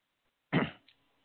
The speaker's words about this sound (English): Let me clear my throat.